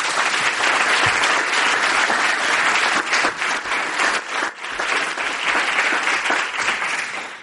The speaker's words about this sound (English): So please give a round of applause for our panelists.